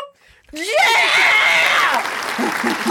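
A canned burst of applause and cheering kicks in abruptly after a brief quiet moment, loud and steady, with a rising whoop riding over the clapping before it settles into sustained crowd noise.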